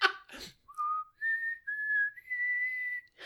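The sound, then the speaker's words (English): Someone tries to whistle: a couple of breathy puffs, then several short, wavering whistled notes climbing in pitch, each held briefly with small gaps between, and no talking. “I couldn't even whistle.”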